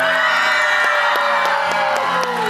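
A large church audience erupts on a count of three in loud, sustained cheering and roaring, a dense wall of shouts and whoops that holds steady for a few seconds, with scattered sharp yells cutting through.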